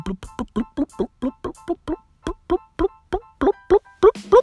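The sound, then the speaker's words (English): A voice imitates stomach gurgling with a quick, steady run of about seventeen short bubbly pops, each throaty and resonant, getting louder and slightly higher toward the end. “Bro, it's as if fucking bubbles are bursting in my tummy.”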